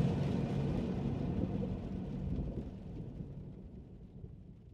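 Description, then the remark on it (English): A diesel engine roars with a deep, steady chugging rumble of pistons, heavy in the low end, easing off slightly toward the end. No one speaks. “The deep chug of pistons and diesel woke me, followed by a light pressure on my shoulder.”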